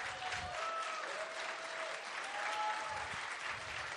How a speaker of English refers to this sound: Choir is now coming out. Let's have a round of applause for our choir. They put a lot of time in.